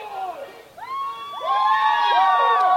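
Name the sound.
crowd cheering and shouting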